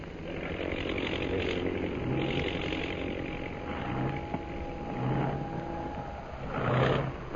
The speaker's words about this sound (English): That plane in center of formation. Oh, yes. Is dropping out of line and circling for a landing.